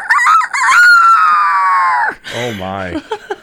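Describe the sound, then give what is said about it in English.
A person's voice imitates a rooster's crow in a long, strained, rising-then-falling call, followed by a lower croaking vocal sound and a few short bursts at the end. “Rooster is the great challenge.”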